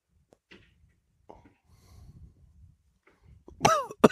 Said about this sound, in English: I was going to answer, but then I did a retrohale and coughed.